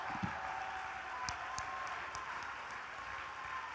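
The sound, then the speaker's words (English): An audience clapping their hands during a church worship service: a dense, steady wash of many overlapping claps, with a few sharper individual claps standing out, lasting the whole few seconds at a moderate level. “Shout unto God with a voice of triumph and clap your hands.”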